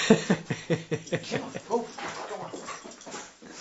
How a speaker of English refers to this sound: Control your dog, sir.